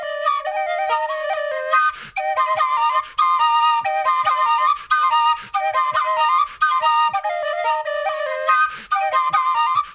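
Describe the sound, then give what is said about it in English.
Two tin whistles played at once by one player splitting the breath between them, in bright, breathy harmony, a lively continuous melody with quick ornamented notes and brief pauses for breath, fairly loud with no voices. “Because you're losing air, so you're splitting the air between two tin whistles, but also you're losing a lot of air between the two.”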